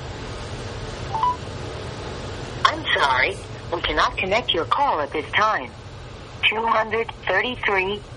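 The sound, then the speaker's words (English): A phone call being placed from the speaker's own phone: a single short tone sounds over a steady low hum, then a tinny recorded operator voice speaks through the handset line, saying the call cannot connect at this time. “Let me try on my own phone.”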